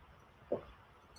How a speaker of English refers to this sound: Excuse me a minute, just need a sip of water.